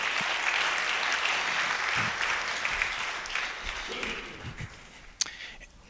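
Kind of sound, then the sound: crowd, audience applause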